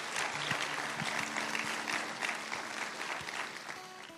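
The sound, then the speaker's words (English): An audience claps together as a hand clap to God, a dense, steady burst of applause that holds at an even loudness for a few seconds. A low sustained tone, like an organ note, sits beneath the clapping. “You should give a hand clap to God that he would do such a thing for your life.”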